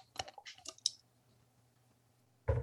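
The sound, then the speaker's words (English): A handful of small, wet drips and clicks in quick succession as drops of Kentucky limestone water are squeezed from a dropper into whiskey, followed by a louder knock at the end. “So I got my Kentucky limestone water that I like to drop a few drops with.”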